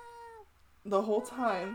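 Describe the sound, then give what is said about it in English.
An older cat lets out a loud, drawn-out yowl at its owner, rising and wavering like an insistent complaint, preceded by a fainter tonal note and a brief pause. “if I'm not immediately available to my older cat, Anora, she yells at me”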